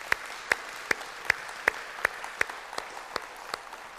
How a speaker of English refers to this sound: So let's give all these guys one more round of applause.